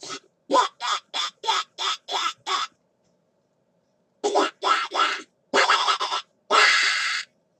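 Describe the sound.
A man imitates a duck with a rapid run of short, nasal quacks, pauses, then lets out several longer, louder, raspier quacks.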